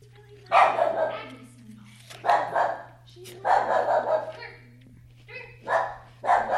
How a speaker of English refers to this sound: Hey, listen. Agnes is barking. Agnes is alarmed. There's a stranger present.